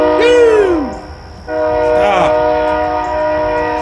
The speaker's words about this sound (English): It is mating season. It is. It's train mating season right now.